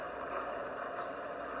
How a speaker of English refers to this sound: Here are the cars. They're starting the engines. There they go. Starting the engines.